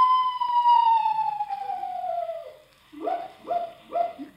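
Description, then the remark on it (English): A screech owl call at night outdoors: a long, wavering whistle slides steadily downward, then three short, hiccup-like hoots follow in a quick, even rhythm, with no talking. “Just a screech owl, Unc.”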